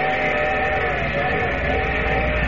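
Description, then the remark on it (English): A train station whistle sounds as the train is about to pull in, one long, steady blast, a loud, reedy, multi-toned wail that holds unbroken for a couple of seconds over a low rumble, with no voices. “That sounds like the station whistle.”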